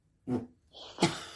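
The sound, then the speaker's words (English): A fart: a short, low rumbling toot, followed by a brief airy hiss and then a louder, sputtering burst, with no talking. “just farted again. I have a lot of gas today.”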